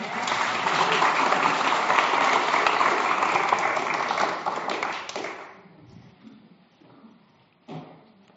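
Loud, sustained applause from an audience fills the first five seconds, then fades into scattered claps and quiet murmuring, with one last brief clap near the end.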